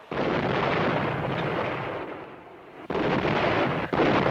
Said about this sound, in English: I just don't want to walk around out there while it's raining artillery shells.